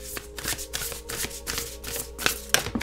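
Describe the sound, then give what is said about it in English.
A deck of cards being shuffled, with a steady run of quick papery riffles and soft slaps repeating over a few seconds, no voices present. “Okay, then let me shuffle this one too.”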